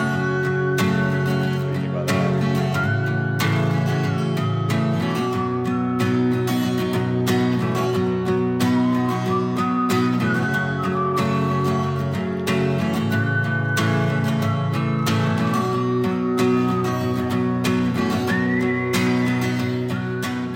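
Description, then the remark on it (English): A recorded whistled melody with heavy added reverb, its sustained notes gliding over a thick, droning wash of sound that stays steady and loud for the whole stretch, with no talking. “I just recorded that. That's why I was late today. You can whistle. I tried. Yeah. And then I put a hell of reverb on it”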